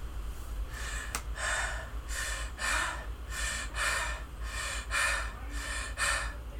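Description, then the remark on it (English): A person breathes heavily right up against a phone microphone, about eight loud breathy in-and-out pulses with a rough, gasping texture over a low background hum. “I was just breathing heavy over my, thinking about my pineapple and bacon pizza.”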